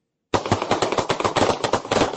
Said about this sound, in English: sound of gunfire there. Four people wounded outside a Bronx housing project.